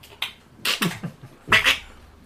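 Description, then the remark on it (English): Someone imitates a duck with a quick series of nasal, raspy quacks, about five or six bursts, the last ones louder and more drawn out. “Duck noises.”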